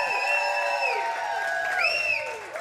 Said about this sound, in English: Give him a big cheer, number 99.